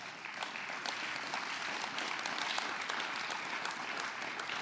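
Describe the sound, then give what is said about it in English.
Steady, dense applause from an audience giving a hand clap of praise, a continuous crackling wash of claps at even loudness for several seconds with no voices standing out. “Can we just give him a hand clap of praise?”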